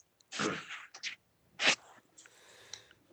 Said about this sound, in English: Bless you.